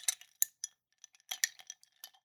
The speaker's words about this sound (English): Clinking his own glass. You can't hear that from across.